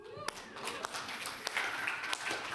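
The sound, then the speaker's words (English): A slow clap started for a scripture reader: four or five single sharp hand claps, evenly spaced about half a second apart, over a faint background murmur of voices. “I'm trying to start a slow clap for you.”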